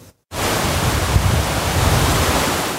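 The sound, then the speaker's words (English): A loud, steady roar of fast-moving, raging water in Mission Creek, Kelowna, rushes without pause, dense, starting abruptly after a brief moment of silence. No voices are heard. “Raging waters in Mission Creek and weather conditions have temporarily suspended the search for a missing Kelowna woman, believed to have been swept away by the fast-moving water.”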